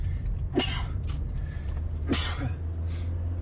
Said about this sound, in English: Excuse me, I'm sneezing here.